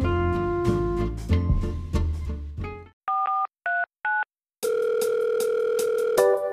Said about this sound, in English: Phone ringing off the hook, got me a little shook. Who's on the line, and is this a sign?